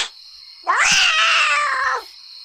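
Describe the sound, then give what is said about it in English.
A single long, drawn-out, loud meow from the show's cat, rising and then holding for over a second before trailing off, over a faint steady high-pitched background hum. “McTuggan's Tales is a segment where we entertain our show cat and show mouse, Mr.”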